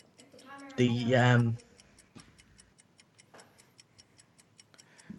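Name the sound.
quiz countdown clock ticking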